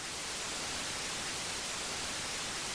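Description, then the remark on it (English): A steady, continuous hiss of adaptive white noise from an app, designed to mask out disturbances, even and unbroken throughout, with a bright airy texture and no voices or other sounds on top. “And then we bring in this adaptive white noise, which is designed basically to mask out disturbances.”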